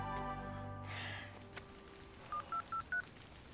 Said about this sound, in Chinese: 我哋都系打电话1823叫渔护署整啦